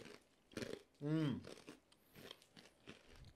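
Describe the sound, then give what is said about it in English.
Crisp crunching as a thin snack is bitten and chewed, a few short crackly bursts spread across the moment, with a brief hummed voice sound in the middle. “Oh, I like the thinness of it. But it's crunchy.”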